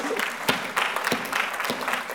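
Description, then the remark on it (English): An audience applauds in a steady, moderately loud patter of many hands, with a few sharper claps standing out at a regular rhythm about every half second. “I don't know everybody will appreciate and clap, but that's okay.”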